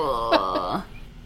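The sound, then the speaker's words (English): A rough throat-clearing cough from a person a few feet away, two quick harsh bursts over a strained voiced rasp, lasting under a second before fading into quiet background noise. “Don't brush me and then cough a few feet away, like...”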